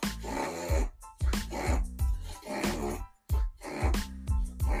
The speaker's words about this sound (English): Excuse me, that's my dog making all that noise. Sorry.